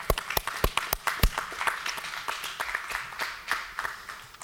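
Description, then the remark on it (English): An audience claps together after communion in a church service, starting with loud, sharp individual claps that blend into a steady, dense patter of applause lasting several seconds, with no voices over it. “You can clap for that.”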